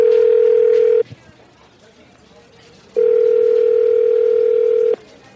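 A telephone line rings on an outgoing call to a man: two long, steady electronic ring tones separated by a two-second pause, clear with only faint background noise between them.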